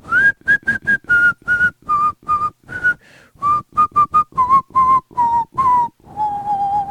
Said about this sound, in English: I do have this wacky bit that I do when I whistle around my six-year-old. My six-year-old doesn't know how to whistle yet.